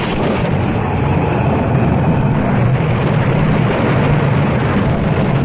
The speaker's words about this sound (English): What was that, Mr. Rowland? That last lightning bolt hit us from the mizzen to the stern, Captain Stokes.